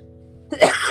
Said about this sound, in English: Man, I still have this cough and it won't go away.